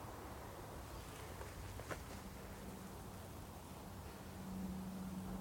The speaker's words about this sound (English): Bit of a hum from the main roads in the valley.